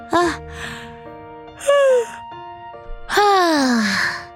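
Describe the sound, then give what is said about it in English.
A voice imitates little Koala's sleepy yawning in a story: three breathy, drawn-out vocal sighs with falling pitch, the last one longest and loudest, separated by brief quiet pauses. “With that, little Koala was also yawning. I'm so sleepy.”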